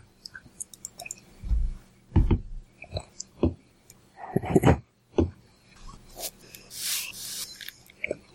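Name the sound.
computer keyboard typing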